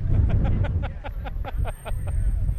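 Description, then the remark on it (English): A UPS delivery truck rumbles past with a heavy, steady low engine drone filling the whole moment, while indistinct voices chatter over it. “Hey, there goes UPS.”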